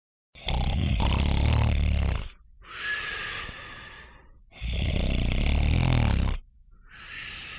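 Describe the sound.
A person fakes loud snoring: two long, rattling inhales, each followed by a softer, breathy exhale, in a slow, steady rhythm with no talking.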